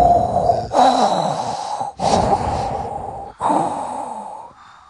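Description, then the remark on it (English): A person imitates heavy, mechanical, Darth Vader-like respirator breathing: three long, loud, hissing breaths in a steady rhythm, each rasping in and out with a low wheezing rumble, and no speech. “It's like when you get the heavy breathing.”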